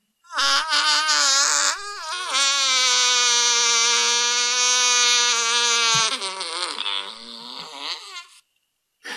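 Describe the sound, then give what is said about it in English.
A person demonstrates how they breathe with an exaggerated honking noise: a brief wavering honk, then a loud, buzzy, sustained nasal drone lasting several seconds, trailing off into sputtering bursts. “This is how I breathe.”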